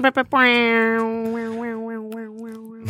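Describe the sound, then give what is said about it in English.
An air horn gives two quick blasts, then one long, loud, steady blare at a constant buzzy pitch lasting over two seconds, while a wavering voice rises and falls over its later part. “New air horn.”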